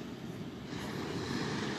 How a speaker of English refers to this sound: I knew that wasn't a star. That's a drone. Oh, shit. That's a fucking drone.